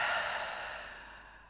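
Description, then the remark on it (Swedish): A single long, deep exhale through the mouth, breathy and airy, gradually fading over about a second and a half with no talking, releasing a deep breath taken in through the nose during a guided breathing exercise. “Och släpp ut genom munnen.”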